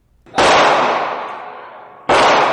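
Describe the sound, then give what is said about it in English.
Two loud gunshots, about two seconds apart, each a sharp crack followed by a long, rumbling echo that slowly fades before the second shot. “The sound of gunshots.”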